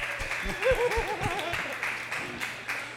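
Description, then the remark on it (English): A crowd claps steadily throughout, a dense patter of many hands, while a voice briefly rises over the applause in the first half. “You can clap for that, right?”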